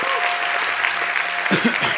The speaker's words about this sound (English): Can we clap? Can we thank the Lord?